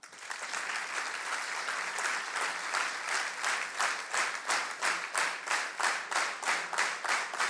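An audience, asked to applaud and then synchronize to a beat, claps in a broad wash that gradually locks into unison, turning into loud, evenly spaced rhythmic claps at a steady beat.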